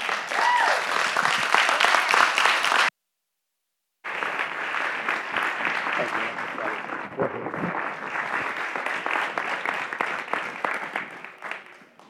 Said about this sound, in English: How come y'all quit clapping?